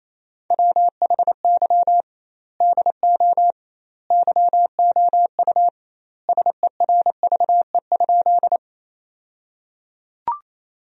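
Fast Morse code at about 28 words per minute, sending sentences built from the top 400 words with double word spacing: a single steady mid-pitched beep keyed in quick dots and dashes, grouped into bursts with short pauses, ending in a faint click.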